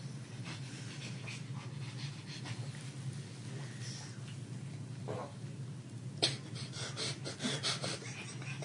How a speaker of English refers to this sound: Squelchy dog.